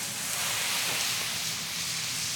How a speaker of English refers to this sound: Did you hear it? I heard it. Yeah, I went into the pasta pot, I took a ladle of water, and I threw it in the pan with the sausages